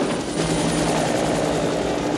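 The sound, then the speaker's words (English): A helicopter's rotor and engine drone steadily and loudly throughout, a dense continuous whir with a low thumping pulse beneath it and no voices. “Terrifying albino helicopter sniper.”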